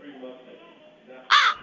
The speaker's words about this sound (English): Well, see, me and my sister came into this room, and we got this crow in here